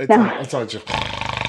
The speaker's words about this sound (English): Do you hear the dog snoring?